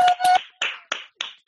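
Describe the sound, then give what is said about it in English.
Applause: people clapping for front-line workers, joining in over unmuted microphones; about six sharp claps arrive at a loose, uneven pace, fairly loud, with a faint steady whistle-like tone under the first few. “So can everyone unmute their mics and join in as we clap and applause for those people who are working on the front line.”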